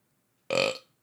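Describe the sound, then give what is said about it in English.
A single short, loud burp erupts abruptly from near silence, lasting about a third of a second with a rough, throaty buzz before fading quickly. “Man, I'm fucking burping.”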